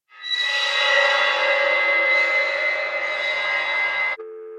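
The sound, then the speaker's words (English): A loud, harsh electronic screech fills the line for about four seconds, then cuts off abruptly and a steady, low telephone dial tone hums in its place. “And it went on until the line fell dead and a dial tone took its place.”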